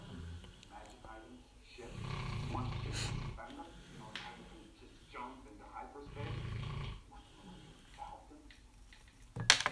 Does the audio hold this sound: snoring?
yes